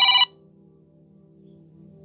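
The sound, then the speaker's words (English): A phone ringtone for a returned call gives one short, loud electronic burst, then cuts off, leaving only a faint low hum. No one speaks. “I guess it's called me back.”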